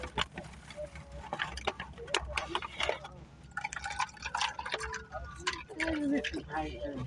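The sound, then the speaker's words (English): Water pours and splashes in uneven bursts with scattered drips and ticks while voices murmur in the background over a low steady rumble. “You got some water now?”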